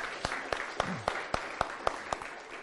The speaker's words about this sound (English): Thank you, kids. Let's give the kids a round of applause. Haven't they done well? Brilliant job.